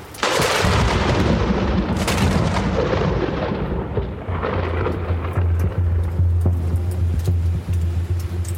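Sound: lightning strike thunder crack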